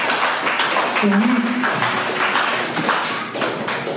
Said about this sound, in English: I like that slow clap. Whoever did that, that was good.